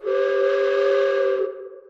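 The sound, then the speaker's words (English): A loud, steady train whistle blows in one sustained blast of about a second and a half, then cuts off and fades with a brief echo. No one speaks. “I hear a train coming.”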